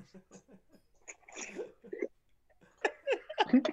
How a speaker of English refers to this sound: Did you just cough? Yes, I coughed because I smoked my thing too hard. You smoked your thing too hard? Oh, your Juul.